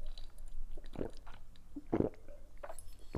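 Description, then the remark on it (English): Wet swallowing sounds of someone sipping from a glass of lemon, about three gulps spaced roughly a second apart against a quiet background, with no talking. “I need to take a sip or else I'm going to take some of this sip of this cough suppressant.”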